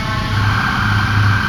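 An ambulance drives past outside, a steady, fairly loud rumble of engine and road noise with a sustained high tone running over it, no voices.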